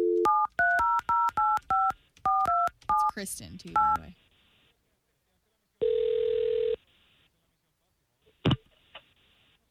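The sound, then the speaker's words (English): A quick run of touch-tone beeps dials a phone number as morning radio show hosts call a woman, followed by a single ringing tone on the line, then a click as she picks up and a voice briefly speaks. “Well, I hope that she receives our phone call well, as we're going to call her right now, okay?”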